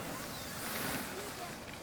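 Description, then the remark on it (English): Steady wind gusts across an open beach, a continuous breathy rush with a faint wash of surf beneath it, holding at an even level throughout the short stretch, as the Wright brothers prepare their glider for flight. “The wind is just right, and I think you're in for a real treat.”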